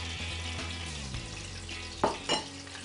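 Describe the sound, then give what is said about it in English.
Steady crackling sizzle of yuca frying in 350-degree oil, with a couple of louder scraping or stirring bursts near the end; no one speaks. “Place that in the oil. Be careful because there can be some water with this vegetable.”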